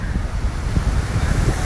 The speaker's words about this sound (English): Yes, your girl, the goddess queen, is here indeed at Miami Beach. And I had a listener let me know how much they had enjoyed the previous podcast that I did where you could hear the ocean. So here you are, another gift for you.